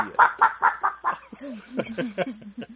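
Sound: chickens clucking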